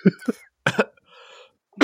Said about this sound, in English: It just coughs up a little bit of blood.